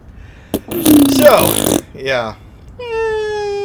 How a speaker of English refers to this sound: insert the balloon deflate sound effect.